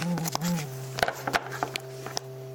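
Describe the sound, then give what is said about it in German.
A light detector, held in a very dark corner with a finger placed over it, gives off a steady low electronic buzz with a wavering pitch at first, then holding constant, while scattered clicks and handling taps sound over it. “dann brummt er.”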